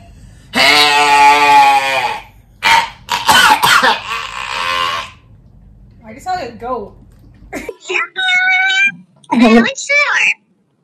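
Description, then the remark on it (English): A person imitates a goat with several loud, wavering bleats, some stretched out and quavering, others short and choppy, with brief pauses between them. “Goat. I'm imitating sister.”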